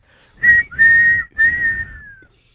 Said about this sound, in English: Next segment. Blow the whistle.